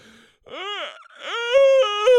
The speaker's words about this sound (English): Yeah. Like the fake almost yawn, the fake yawn. Because yawns are typically silent, right?